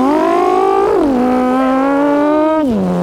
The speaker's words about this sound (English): Dirt bikes are loud as fuck. Yeah, they're the worst. I mean, they're not the worst. Yeah. Yeah. They're really fucking loud.